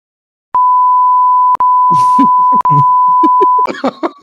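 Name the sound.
censor bleep tone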